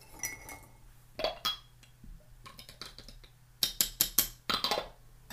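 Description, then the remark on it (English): Green tea is poured into a cup with a brief, steady trickle, followed by a series of sharp ceramic clinks and taps in irregular bursts. No one speaks. “In fact, maybe I'll just pour some green tea first, because that's probably necessary at this stage.”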